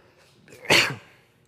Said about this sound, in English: That was a cough, but thank you. I appreciate it.